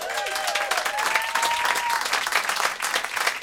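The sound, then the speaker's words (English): A steady wash of audience applause welcoming a band, dense overlapping claps at an even loudness throughout, with a few faint whistles rising early on and no one speaking. “There's a lot of them, so keep clapping.”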